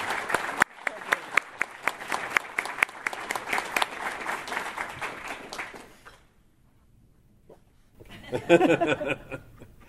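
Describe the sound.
A crowd applauds with dense, steady clapping for about six seconds, then it fades to near silence before a burst of voices and laughter breaks in.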